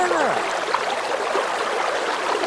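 A steady, continuous rush of flowing river water fills the whole stretch at a moderate level, with a voice faintly audible underneath.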